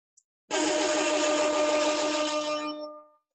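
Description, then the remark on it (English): A small click, then an electric fan whirs to life with a loud, steady motorized hum and whine that runs for a few seconds before fading out. No one speaks. “I'm gonna turn my fan on because I'm hot.”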